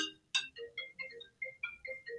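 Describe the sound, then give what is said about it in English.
A mobile phone rings with a quick melodic ringtone: a string of about a dozen short, bright electronic notes at a steady, bouncy rhythm, fairly soft, with no talking over it. “Should have switched my phone off.”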